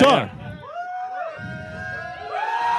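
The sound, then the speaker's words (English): An audience yells and whoops in a loud, overlapping burst, several voices rising in pitch over a steady crowd babble that keeps going for the whole few seconds. “Without even saying anything, there was some yelling.”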